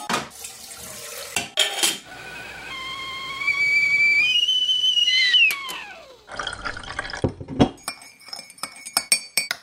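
Water runs briefly, then a kettle's shrill whistle rises in pitch, holds loudly for a few seconds and slides away, followed by cups and crockery clinking. No one speaks.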